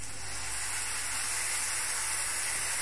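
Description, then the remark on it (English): Steady, loud hissing sizzle of stock added to a hot pan of cooking potatoes, a continuous bright crackling wash that holds evenly for about three seconds with no voices. “Oh, a bit of sizzling.”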